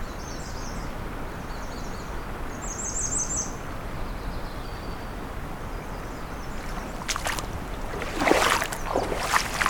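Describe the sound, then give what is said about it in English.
A northern waterthrush sings a few quick, ringing chirped phrases over a steady rush of background noise, followed by some rustling and bumping near the end. “It's definitely a northern water thrush.”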